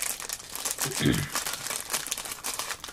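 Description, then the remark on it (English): Crisp crinkling of a Lego Marvel Studios minifigures foil pack being torn open by hand at the flap, a continuous rustle with a fuller ripping burst about a third of the way through. “Lift up the flap and tear. Mine came open really easy. Sorry, mine's literally separating from the foil.”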